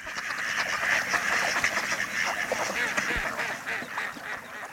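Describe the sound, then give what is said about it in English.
A busy chorus of mallard ducks quacking at a local pond, many overlapping calls at steady loudness, including a female calling out, with no talking. “Ah, mallards at your local pond.”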